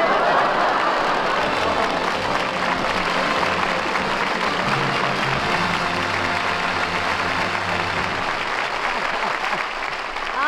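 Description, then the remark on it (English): A studio audience applauds steadily for about ten seconds, a dense, even wash of many hands clapping at once that stays loud throughout, with faint voices mixed in underneath. “While you were talking to Duffy, I went up to my dressing room to lie down for a while, and I heard the applause, and I figured you needed me, so I came down.”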